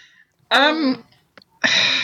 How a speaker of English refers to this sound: So, before I cough myself to pieces, let's have Frocks of the Week.